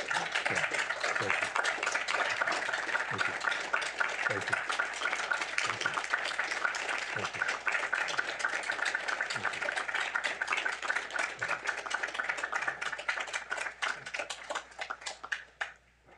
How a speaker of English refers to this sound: I think we had a large group of people online standing and applauding too.